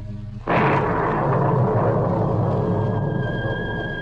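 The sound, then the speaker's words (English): A sudden crack of thunder with a flash of lightning at night bursts in after a low hum, then rolls on as a loud, sustained rumble that slowly settles, with a faint steady tone emerging near the end. “Flash of lightning, like a giant white electric light, lit up the sky that night as I went up the walk.”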